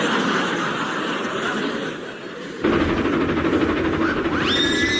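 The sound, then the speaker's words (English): An approaching steam train chuffs with a steady rhythmic hiss that grows stronger partway through, and a high whistle rises near the end, with no voices. “I can hear the first puff puff approaching.”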